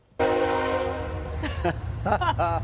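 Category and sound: vehicle, train passing with horn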